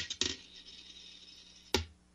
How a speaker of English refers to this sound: So what are we doing, heads or tails? Heads, David Johnson returns this season. Tails, he does not.